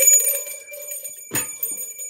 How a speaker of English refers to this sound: It's a two-bell Tuesday.